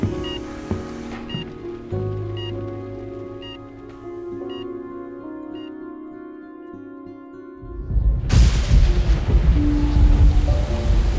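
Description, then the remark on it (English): Low sustained tones with faint periodic high pings hold for about eight seconds, then a loud, roaring burst of heavy rain and storm noise with rumbling thunder crashes in and fills the rest, as the streets start to flood. “If this storm gets any worse, we might have to swim for it.”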